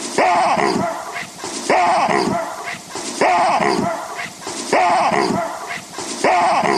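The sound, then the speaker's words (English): A real baboon's harsh, loud bark, from a YouTube video labeled Wahoo, the baboon bark, repeats five times in a steady loop, each call roughly a second and a half apart, clear with no talking. “So if you want, let's play the it's called a real baboon bark, and it's a 5-time loop.”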